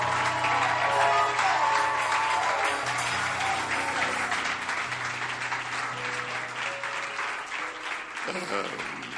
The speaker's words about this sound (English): Clap for them.